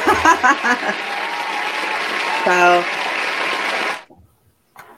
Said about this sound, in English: You know, I'll just hit the applause button. Hold on.